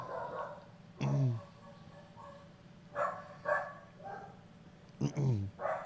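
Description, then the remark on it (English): A dog, Puccini, lets out two short, sharp bursts of barking and snapping a few seconds apart, correcting another dog while it is being introduced to the group, against a low background hum with faint vocal sounds between. “Puccini corrected again.”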